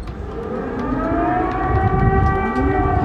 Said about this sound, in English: Not what you want to hear. It's air raid sirens in Kyiv as the Russian invasion of Ukraine now in its sixth day.